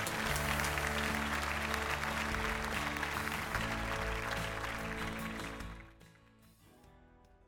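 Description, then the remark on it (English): A church audience applauds steadily for several seconds for people who came forward with their faith and were baptized, a dense wash of clapping over a sustained musical chord, before the applause thins and fades away near the end. “Let's give another round of applause to all these people that came forward with their faith.”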